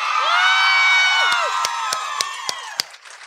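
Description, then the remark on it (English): A live audience cheers and whoops, many voices overlapping in a loud, sustained roar that slowly tapers off, with a handful of sharp claps popping through near the end. “This is a good crowd.”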